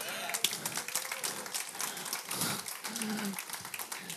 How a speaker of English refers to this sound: Please clap.